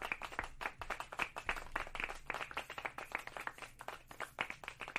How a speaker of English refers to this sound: Clap it.